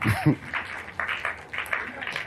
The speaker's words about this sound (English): Clap your hands for God. Oh, keep clapping.